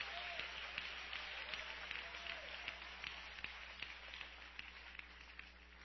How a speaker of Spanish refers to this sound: Dele palmas a Cristo en esta bendita noche.